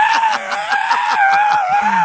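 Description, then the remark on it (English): A child screams continuously and loudly for about two seconds because of a tablet, a sustained high-pitched wail that wavers slightly, with faint rhythmic thumping underneath and no other talking. “started screaming because of the tablet.”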